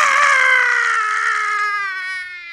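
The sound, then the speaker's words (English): A person vocally imitates a powerful wizard screaming at the top of his lungs as a dagger enters his chest and he disappears in a cloud of dust: a long, wailing crying scream that starts loud and slowly drops in pitch and fades, a single sustained howl with no other talk. “But that dagger enters his chest, and he disappears in a cloud of dust and screams at the top of his lungs in this crying fade that goes something like this.”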